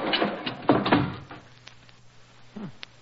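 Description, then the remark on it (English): A heavy, stiff door with a rusty hinge grinds and scrapes as two people force it shut beneath a cracking archway, ending in a couple of dull thuds, followed by a low steady hum and a faint creak. “Hurry, help me close the door before the archway falls on us.”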